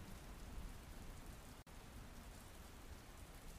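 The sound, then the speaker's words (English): Steady, dense rainfall during a thunderstorm pours down continuously, a broad hiss with a brief dropout partway through. No voices or distinct thunderclaps stand out, just the constant wash of a heavy downpour. “But we can't forget, no matter how comfortable or freaked out we are, that thunderstorms, the rain, the clouds, and the wind, they all act as cover”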